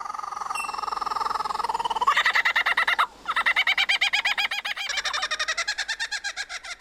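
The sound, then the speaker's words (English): An Australian lyrebird, in a BBC Earth documentary, mimics a kookaburra's laughing call: loud, rapid cackling bursts that build into a steady rhythmic chatter, pausing briefly midway before carrying on. “In a BBC Earth documentary, that includes imitating another Australian bird, a kookaburra.”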